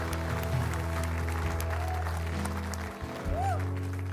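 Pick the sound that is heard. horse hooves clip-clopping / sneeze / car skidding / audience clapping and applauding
audience clapping and applauding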